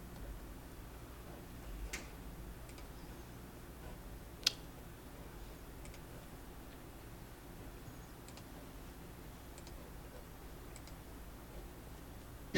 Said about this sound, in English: Sorry, I'm not familiar with PC as well. You're clicking the wrong link